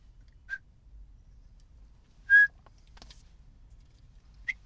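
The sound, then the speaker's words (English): Three short, high whistled chirps spaced a couple of seconds apart, the middle one loudest and slightly drawn out, over a faint low hum with no talking: a person's burps muffled by a whistling silencer, after eating a Carl's Jr. Charbroiled Burger. “I got a silencer on my burps.”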